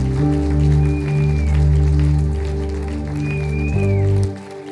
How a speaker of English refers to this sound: Let's give them a round of applause while they come down the front here.